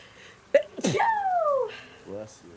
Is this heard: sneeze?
yes